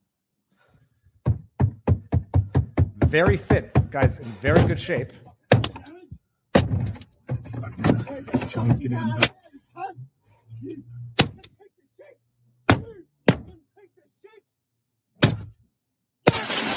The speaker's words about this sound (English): First of all, the guy's striking Australian. He's actually striking a car with a boomerang.